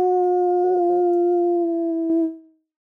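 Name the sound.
person imitating a howl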